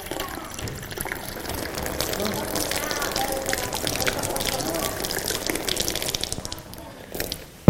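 Water pours steadily into a cup until it overflows, a continuous splashing, gurgling stream for several seconds, ending with a brief louder clunk.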